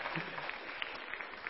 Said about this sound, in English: You can clap for him. Go ahead. Yeah.